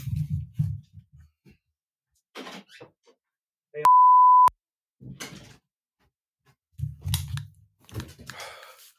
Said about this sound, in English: And someone's ringing my doorbell. I gotta go check that.